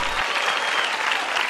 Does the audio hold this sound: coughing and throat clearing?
no